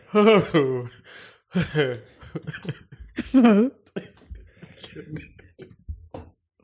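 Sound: loud yawn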